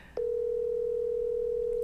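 A phone call sounds over a speakerphone: after a brief soft click, a single steady electronic tone hums continuously and fairly loud to the end, with no one talking.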